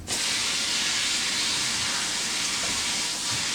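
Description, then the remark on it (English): Tap water runs steadily over packaging peanuts to test whether they are cornstarch, a continuous bright, hissing rush that holds even from start to finish with no voices. “The only thing I can say is you have these little packaging peanuts, and I'm just going to run them under water just to see if they are cornstarch.”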